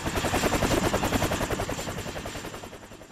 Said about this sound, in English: even though the helicopter was above them